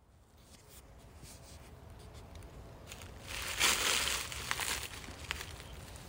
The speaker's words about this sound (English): If you can hear the scruffling, that's rain in dead leaves.